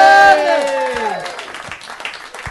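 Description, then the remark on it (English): A live audience claps and cheers, with a loud voice rising then falling over the opening second before the clapping thins and fades out. “Give a round of applause for Matt Besser.”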